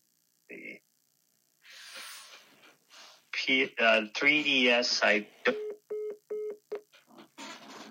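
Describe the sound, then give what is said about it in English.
A phone interview call cuts out: a burst of garbled, distorted voice gives way to a run of short, evenly spaced electronic beeps, fairly loud, like a dropped-line tone. “Oh, it looks like he got disconnected there.”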